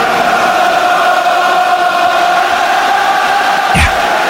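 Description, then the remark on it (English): A huge crowd of Irish rugby fans at the Aviva Stadium sings The Fields of Athenry together in a sustained, droning chorus with 17 minutes left to play, the massed voices blending into a loud, steady wall of song with a brief thump near the end. “Bells of Athenry ringing around the Aviva Stadium.”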